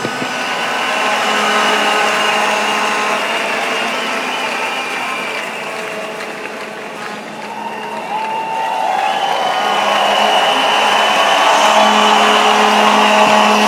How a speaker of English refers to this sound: Give Jesus a big hand of praise.